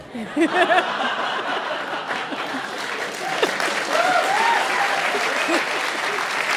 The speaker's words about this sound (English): And just a heads up, some live shows have those little applause signs that light up. We have something different. Whenever it's time for applause, you will hear this. Put your hands up. Please clap.